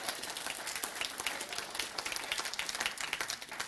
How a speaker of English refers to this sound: Clap it like you mean it, at least. I'm kidding. Little golf claps.